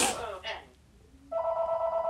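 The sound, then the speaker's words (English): After a brief voice-like burst and a moment of quiet, a phone starts ringing for an incoming call from Toronto: a steady, fairly loud electronic tone that continues to the end. “I don't feel like picking that phone call up right now, but I'm going to let it ring.”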